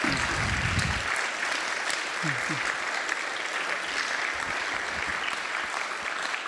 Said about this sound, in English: Let's give one more round of applause for all of our storytellers tonight.